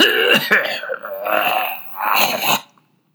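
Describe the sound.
A voice imitates a hoarse passenger in a train carriage choking mid-speech: three rough, gravelly bursts of sputtering and throat-catching, fairly loud, ending abruptly and leaving silence.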